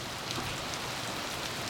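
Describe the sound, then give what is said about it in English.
Steady, chilly rain falling in the Bay Area in a continuous, even hiss of drops spattering on a hard surface, moderately loud, with no voices. “It's been chilly and rainy in the Bay, but I have been reveling in it.”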